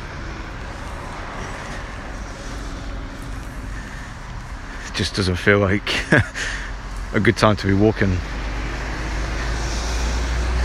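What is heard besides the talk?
road traffic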